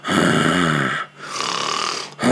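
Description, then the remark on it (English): A voice loudly imitates snoring: two drawn-out, rattling snore sounds, an inhaled snort then a raspy exhale, with a brief gap between them. “Now, when I'm asleep, I let you know, I honk that snore button.”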